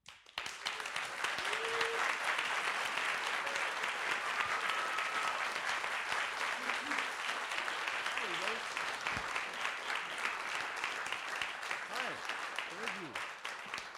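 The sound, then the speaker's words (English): Steady, dense audience applause welcoming a band onto the stage, many hands clapping at a constant loud level, with a few faint cheers and whoops scattered through it. “We're going to invite the gentlemen to come up on stage, and when they do, if you give them, please, a great big round of applause for ….”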